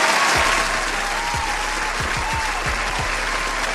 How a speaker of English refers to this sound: Hold on, let me clap for that one time.